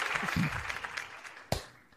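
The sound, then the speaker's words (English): A short burst of hand clapping, a dense patter of claps at moderate volume that thins out, with one sharper, louder clap standing out near the end. “I'll give you a round of applause for that one.”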